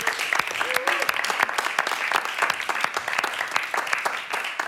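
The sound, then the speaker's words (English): An audience claps steadily in one more round of applause for Aunty Janine Lane, with many hands producing a dense, crackling patter of claps that stays fairly loud and even throughout, mixed with faint murmuring voices. “Now, I know she can't hear us anymore, but please, one more round of applause for Aunty Janine Lane.”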